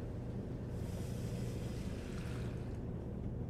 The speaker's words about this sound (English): Ernie looks out the window, and as he does so, Bert hears a click. The washing machine rolls to a stop.